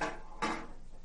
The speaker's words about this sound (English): Anyway, as soon as you sit, because these chairs are really loud, I'll go back to what I was saying.